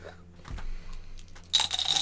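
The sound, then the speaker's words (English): Dice clatter and tumble across a table, a few quick knocks followed by a brighter, rattling burst of rolling that settles near the end. Fairly loud, with no talking. “Look, I used my lucky dice. 18.”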